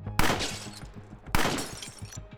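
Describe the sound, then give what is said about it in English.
Two sharp gunshots about a second apart, fired by a figure through a car window into two people in the front seat, each with a bright burst of shattering glass and a crackling tail, loud and punchy over a low rhythmic bass beat. “Two rounds of bullets blazed through the window and into Popeye and Sally's entwined bodies.”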